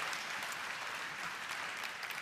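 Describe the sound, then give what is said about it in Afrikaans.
An audience claps together in steady, dense applause that carries on evenly for a couple of seconds. “ons geef hom weer 'n lekker hande klap.”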